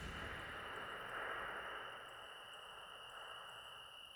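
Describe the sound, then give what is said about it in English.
A soft, continuous chorus of crickets chirping at night, a steady high-pitched shimmer over a faint hush of background noise, with no voices. “Listen to the soft symphony of crickets playing just for you.”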